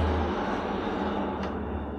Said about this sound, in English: So many trains tonight. Right, it's busy, isn't it?